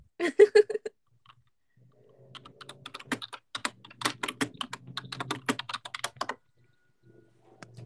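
Rapid, uneven clicking of a computer keyboard being typed on, starting with a few louder taps and then settling into a steady flurry of keystrokes before trailing off.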